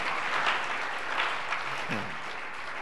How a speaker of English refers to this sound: It's a good place to clap. Amen.